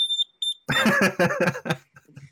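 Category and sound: household object, carbon monoxide alarm beeping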